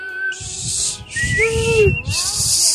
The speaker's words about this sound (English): You want to hear it? Like, okay. Go for it. That's not a whistle. …, you can't whistle.